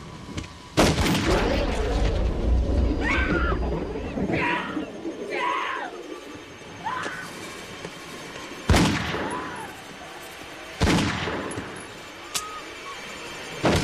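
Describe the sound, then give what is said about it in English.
Several sharp, loud gunshots crack out at uneven intervals as two people shoot each other in a shootout, with a heavy booming blast early on and shouted voices between the shots. “This is Rhodes and Ed shooting each other.”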